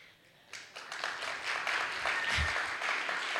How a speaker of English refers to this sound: I should have given you the disclaimer. It's okay not to clap at everything. You can just do it once at the end.